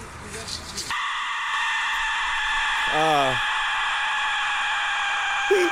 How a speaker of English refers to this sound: Well, let's listen to the Aztec death whistle. So this is the death whistle.